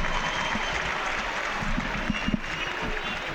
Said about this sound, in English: Yeah, 15 is going off there, young Stacey, and he's getting a right, good round of applause.